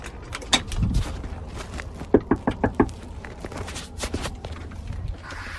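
A quick series of five sharp knocks on a wooden front door of a house, evenly spaced, with a soft shuffle and a low thump of movement before and after and no talking.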